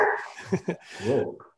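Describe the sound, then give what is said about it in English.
A dog named Rascal barks twice in quick succession, then lets out a longer, drawn-out bark with a whiny edge. No one speaks. “Rascal the dog said it's not tiny.”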